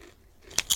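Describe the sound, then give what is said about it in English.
A couple of sharp crunches, like someone biting into crisp potato chips, after a brief quiet moment. “Can we crunch on air?”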